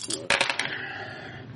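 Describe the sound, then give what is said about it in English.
A large handful of dice clatter onto a hard table in a quick burst of clicks and rattles, then settle and ring out briefly, fairly loud; a roll in a tabletop role-playing game. “So that's 40. It's a million dice.”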